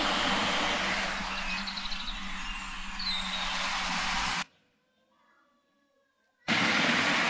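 A steady roar of heavy road traffic with faint bird chirps barely poking through; the traffic drops away for about two seconds, leaving soft birdsong, then surges back.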